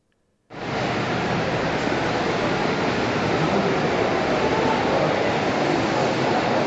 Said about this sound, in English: It's at the top of Lonsdale Street in Clawson's Place. It was raining, so the atmospheric noises that you hear around the voices, it's rain, but there were people there and they were cross.